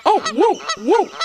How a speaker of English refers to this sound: Ah, the goose got it. Give me back my sandwich, you smelly goose.